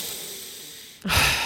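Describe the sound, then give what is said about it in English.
A soft, breathy exhale trails off, then a sharp, loud burst of breath comes in, like a quick pant or snorting huff during a breathing exercise. “That sounded like a pant, but that's okay.”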